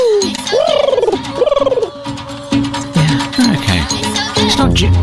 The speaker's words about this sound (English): In the film. We don't know anything about the film yet. Right. Other than it's called Coco Crush. Right. This is a little bit of it here. It's like an owl.